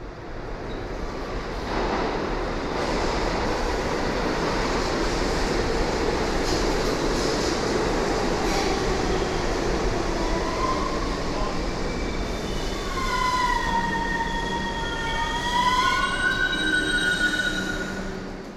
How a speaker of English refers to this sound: The screeching and groaning of what I heard the first time the subway cars came pulling in